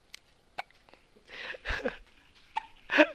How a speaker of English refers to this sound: He's got the hiccups right now. Look at him. Is that a cute guy? Look at this guy. Oh, he's got the microphone. Listen, say something. I want them to hear you hiccup.